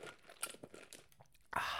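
Sipping a refreshing cold drink from Dunkin' Donuts: soft crackling and crinkly clicks, then a sudden loud, airy slurp that carries to the end. No one speaks.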